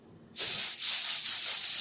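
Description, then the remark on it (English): A person imitates a snake with a loud, sustained hiss that starts abruptly and runs unbroken for about a second and a half, pulsing slightly in strength. “Okay, I think you can switch to English now. Oh, I was speaking snake.”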